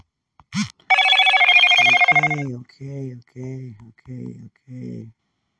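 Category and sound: household object, phone ringing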